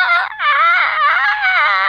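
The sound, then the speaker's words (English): A voice imitates a fox's call: a loud, high, wavering wail with strong harmonics, briefly broken after the first moment, then sustained and warbling for nearly two seconds. “well, actually, what foxes say is.”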